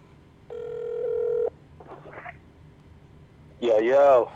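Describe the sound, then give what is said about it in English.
A telephone call ringing through: one steady electronic ring tone lasting about a second, a short rustle, then a voice picks up near the end, fairly loud. “So we gonna call him. We gonna get him on the phone, man.”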